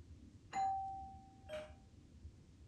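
A two-tone doorbell chimes once, a bright first note ringing out and fading before a second, softer tone follows, heard indoors over a low background hum with no one speaking.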